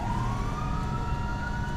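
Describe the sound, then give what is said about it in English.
A fire truck siren wails with a slowly rising tone over a steady low engine rumble, continuous, with no one talking. “We need fire truck again.”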